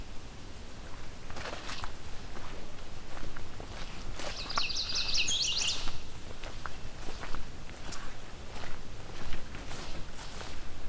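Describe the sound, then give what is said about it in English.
A yellow warbler sings one short, bright, rapid phrase midway through, fairly clear above a steady background of footsteps crunching along a trail. “There's our yellow warbler.”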